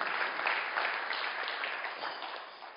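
A crowd applauds steadily, many hands clapping into a dense, hissy wash of sound that holds fairly even before easing slightly toward the end. No one speaks over it.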